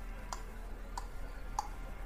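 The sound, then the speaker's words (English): A voice imitates a clock ticking with three soft, evenly spaced mouth clicks, each short and sharp, against a quiet, faintly hissy background with no talking. “That was a really bad clock ticking sound. It's a clock ticking.”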